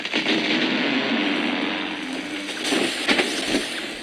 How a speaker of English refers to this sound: That was one of the millions of trees cut down each day for the paper industry. The heavy buzzing of machinery, the creaking of trees as they fall to the forest floor